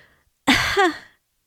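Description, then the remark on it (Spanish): A girl pretending to be sick gives a single deliberate, exaggerated fake cough with a voiced, throaty tail, fairly loud, lasting under a second with silence around it and no talking. “respondió con una tos falsa.”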